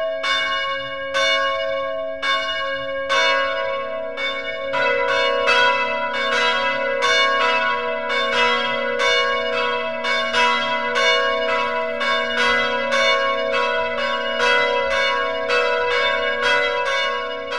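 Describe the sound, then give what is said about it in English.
Church bells peal loudly and continuously, overlapping strikes ringing out in a steady, rapid rhythm with a lingering hum beneath, no voices present. “It's time for the bells.”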